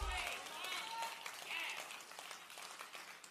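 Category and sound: crowd, audience clapping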